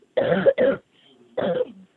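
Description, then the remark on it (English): Three fairly loud coughs from a woman getting over a cough: two quick harsh bursts back to back, a short pause, then a third throat-clearing cough. No talking. “Sorry, I'm getting over this cough.”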